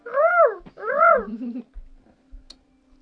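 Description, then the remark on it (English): Two loud, swooping bird-like calls from a game sound effect imitating a fictional Renekian bird to get someone's attention, each rising then falling in pitch, followed by a lower trailing tone, soft clicks and a brief high blip. “It sounds like a Renekian bird. It gets your attention.”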